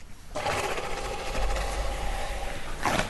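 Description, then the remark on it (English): A walrus near the shore gives a long, rough, buzzing growl that rattles steadily for about three seconds at a fairly loud, even level, with no one talking over it. “Oh, I'm downwind of them now, and man, they stink. That's what an all shellfish diet will do to you. Walrus.”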